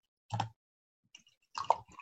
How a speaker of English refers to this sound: I'm drinking coconut water. Oh, nice. I'll leave that in. Wait, do it right next to the mic so we get the ASMR of you pouring.